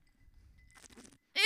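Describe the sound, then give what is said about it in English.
A wet gulp of water with a few quick swallowing clicks, then a sudden loud vocal outburst cuts in at the very end. “I'm going to take a gulp of my water.”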